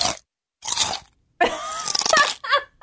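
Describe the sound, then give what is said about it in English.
Loud crunchy chewing: a few sharp crunching bites, then a longer run of rapid, wet munching that trails off into one last crunch. No one speaks. “But my number one is pet peeve is people who chew loudly.”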